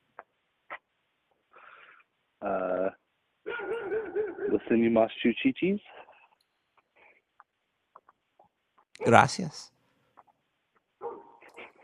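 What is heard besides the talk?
dog barking and whimpering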